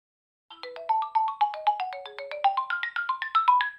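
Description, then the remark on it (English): A phone line's ringtone, heard when calling a phone number from a movie website, plays the Nintendo GameCube startup jingle: a quick, bright cascade of chiming electronic notes rising and falling for about three seconds, loud, with no one talking. “The GameCube intro sound is the ringtone.”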